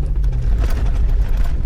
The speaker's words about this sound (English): Delbert eases his battered pickup onto a dirt road in the Chattahoochee National Forest